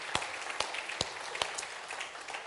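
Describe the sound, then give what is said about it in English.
A church audience applauds as a hand clap of praise to the Lord, with steady, dense hand clapping, a few sharper claps standing out at regular intervals above the crackling wash, holding a fairly even level throughout. “So y'all give the Lord a hand clap of praise for that.”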